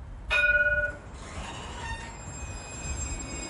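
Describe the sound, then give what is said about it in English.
A tram in Dublin, stopping near St. Stephen's Green by Grafton Street, gives a loud, bright tonal squeal or chime that lasts under a second, followed by a steady rumble and high whining tones as it idles or slows at the stop. “Like near St. Stephen's Green, where the Lewis tram makes a stop near Grafton Street.”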